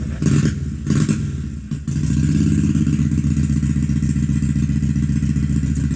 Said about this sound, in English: We're at the AMCA meet in Hebron, and there'll be a lot of motorcycle noises.